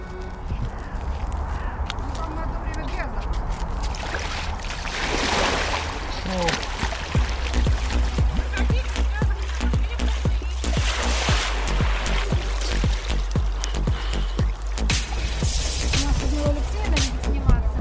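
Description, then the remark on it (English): Water of the Neva River in St. Petersburg sloshes and churns steadily around drifting ice on a crisp morning, under a low outdoor rumble, while crows caw repeatedly and faint voices murmur in the background. “Neva River, ice fishing paradise.”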